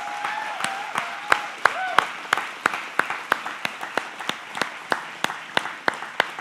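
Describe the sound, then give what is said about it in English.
Applause from a church audience on Father's Day as the dads stand up to be recognized, sharp claps landing in a steady, regular rhythm over a continuous wash of crowd noise, with a brief vocal cheer near the start. “Can we get all of our dads in the house to please stand up so we can recognize you guys and give you an applause for all that you do.”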